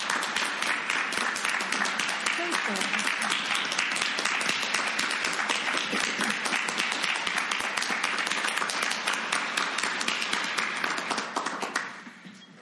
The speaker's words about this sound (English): And can we all please just applaud them for them?